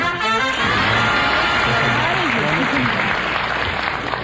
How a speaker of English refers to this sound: Some rat out there started the applause.